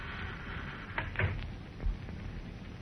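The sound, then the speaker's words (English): A side door being opened quietly as someone sneaks through: a few small latch clicks and rattles, then a soft low thud, over a steady background hiss with no one talking. “Well, I'll just sneak through this side door and listen in a bit before breaking up the party.”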